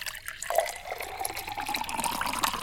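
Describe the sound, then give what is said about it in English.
A steady stream of juice pours into a glass in a game of filling it closest to the rim, a continuous splashing trickle with a faint rising pitch as the glass fills, no talking. “And commence the pour.”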